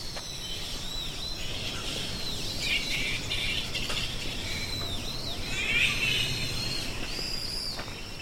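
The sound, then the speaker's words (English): A flying fox colony in the bush squabbles in a steady chorus of shrill, chattering squeaks and screeches, with a few sharper cries rising above the constant background din. “As we walk deeper into the bush, we should begin to hear them.”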